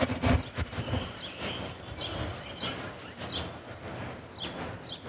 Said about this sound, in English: Can you hear the birds? Yes, I was just about to ask you.